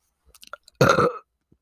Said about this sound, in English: Oh, that was gross. Right into the microphone, too. I don't know what you hear. That burp had two layers to it. Did you? It was like a burp and then like a, like, I don't know.